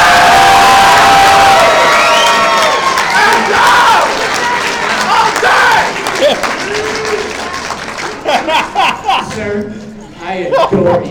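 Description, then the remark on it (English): A large audience claps and cheers loudly to vote for Batman in a Batman versus Black Panther battle, with whoops and high shouts over dense, steady applause that thins out toward the end into scattered claps. “So, by a round of applause, I need you guys to say who wins this battle.”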